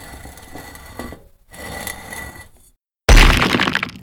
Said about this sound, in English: The great stone lid crashes to the ground.